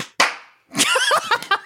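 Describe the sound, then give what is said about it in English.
A single sharp, loud clap from several hands at once on a count of three, slightly ragged, with a short ringing decay, then a burst of overlapping excited voices. “Let's, well, okay, let's clap. Let's clap. Okay, 1, 2, 3.”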